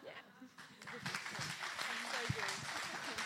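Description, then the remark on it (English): A family claps steadily for a few seconds, the irregular overlapping claps fairly loud, with faint voices murmuring and a brief exclamation underneath. “And family claps.”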